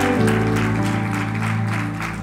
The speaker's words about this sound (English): Let's give a bigger round of applause for that tremendous.